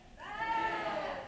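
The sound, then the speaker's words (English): An audience at a church service voices a single drawn-out, wavering "baa" together at the preacher's prompt, imitating a sheep's bleat. It is loud and lasts about a second before trailing off. “We're all just a bunch of sheep. Everybody said, bah.”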